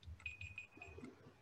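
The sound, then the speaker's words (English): An alarm goes off, a high electronic tone that holds steady with repeated beeping pulses. It is fairly quiet, with a low rumble underneath and no speech. It is an alarm the speaker had set for themselves. “Set my alarm for myself.”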